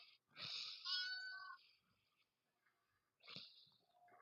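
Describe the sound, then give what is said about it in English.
A cat coin bank toy, a little box with a cat inside that comes out to grab a coin when the button is pressed, plays two fairly loud bursts of meow-like cries, the first longer, the second after a short pause, with no talking. “This little box has a little cat in it. He presses the button. The cat comes back out, presses the button, and goes back inside.”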